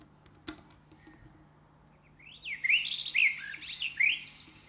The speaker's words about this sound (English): and then what it does is that it will like shine for like a half an hour and increase the brightness until you wake up. And if you don't wake up, you get to wake up to the sound of birds.